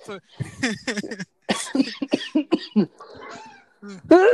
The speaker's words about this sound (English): I drink all my coffee. I can't clear my throat now.